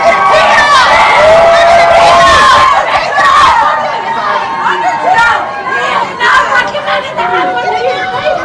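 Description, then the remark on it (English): A dense crowd of protesters holding signs yells and shouts over one another in loud, continuous babble, with raised voices and occasional cheers rising above the din throughout. “After that question, the crowd put signs in front of our cameras, and they started yelling too loud for us to ask any follow-up before the group went inside.”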